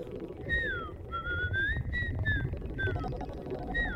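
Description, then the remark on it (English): A robot chirps and whistles in a quick series of rising and falling electronic warbles, steady over a low rumbling background hum. “Enough with the beep beep boop boop, I'm just a car garbage.”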